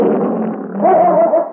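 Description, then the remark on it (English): A bear roars inside an echoing cave with a loud, continuous rumbling growl that lasts over a second, rising into a higher, strained tone partway through. No one speaks. “When he reached it, the bear's roar filled the echoing cavern.”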